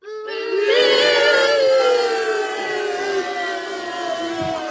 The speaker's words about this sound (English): I like that there's a couple of kids in there going... And the hissing. A couple of weird little kids.